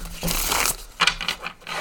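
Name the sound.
tarot cards being shuffled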